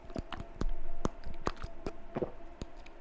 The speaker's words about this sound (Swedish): Nummer 1. Smackande. Ett av de värsta sakerna hon vet är när någon tuggar vattnet som hen dricker.